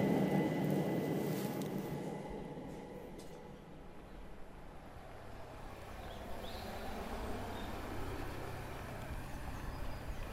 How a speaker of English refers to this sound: Well, that's quite apt, because you can almost hear an aeroplane overhead.